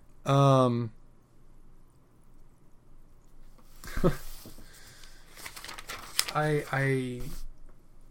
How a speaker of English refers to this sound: Wow, does my paper really make that kind of a sound size? No. Maybe it was just extra sharp. I might actually have to edit that out.